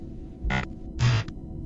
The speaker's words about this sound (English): And there's some interference stuff going on in the background.